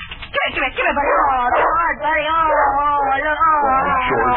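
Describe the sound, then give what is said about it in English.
A dog at the back door whines and yelps continuously, loud, its high, wavering cries rising and falling with short bark-like bursts over about four seconds. “I think Bunny's at the back door.”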